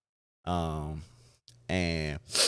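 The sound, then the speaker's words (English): A couple of short voiced sounds from a person, followed by a quick, loud sniff through a nose congested by the season in Louisiana. “Sorry about the sniffling too, guys. It's that time of year.”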